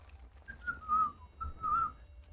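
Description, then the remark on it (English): A man whistles a short, wavering tune to himself in two drawn-out phrases while tightening straps around cargo pallets, moderately loud, with a low background hum and no talking. “He's kind of just whistling to himself.”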